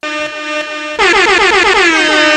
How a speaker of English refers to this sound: Air horn.